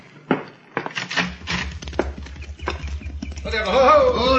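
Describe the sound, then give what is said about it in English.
Horses' hooves clip-clop in a loose, uneven rhythm as several riders approach and slow to a stop, over a low rumble, with a horse whinnying near the end. “Get down off your horses and come in.”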